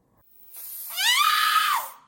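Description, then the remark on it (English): A steady, airy hiss of pepper spray bursts out for about a second and a half, joined midway by a high, rising cry that fades out with the spray. “Hope you don't mind me borrowing your pepper spray.”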